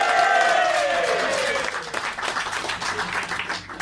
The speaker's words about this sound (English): You are famous. Give this guy a round of applause.